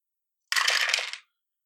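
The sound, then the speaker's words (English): Six dice, rolled for a dexterity stealth check in a game, rattle and clatter across a hard surface in one quick burst of sharp clicks, lasting under a second, fairly loud, with no voices. “Let's just do a quick dexterity stealth check. To see if we generally get caught. So that'll be 6 dice.”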